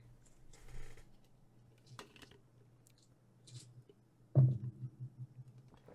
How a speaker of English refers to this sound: Yeah, roll to unleash your power. Lucky Gen Con dice. Don't fail me now.